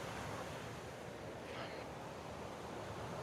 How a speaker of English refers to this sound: Which is just on the edge of a craggy rock. It's kind of nice. You kind of get that misty spray. Get up. There's the ocean.